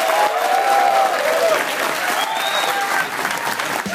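Steady audience applause fills the whole four seconds, a dense, even wash of many hands clapping at a fairly loud, constant level, with a few faint whistles or cheers mixed in and no talking.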